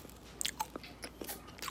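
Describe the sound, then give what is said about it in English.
A sizzling strawberry hard candy being crunched: a quick series of sharp, brittle cracks at an uneven chewing rhythm, fairly quiet overall, with no talking. “Pop it in. Okay, crunch it up.”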